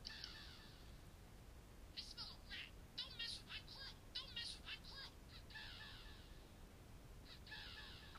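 A video game voice line for the character Crow in his Mecha Crow skin: harsh, raspy crow caws repeat in rapid, loud bursts, with a few longer drawn-out calls at the start and end and a choppy cluster of short caws in between.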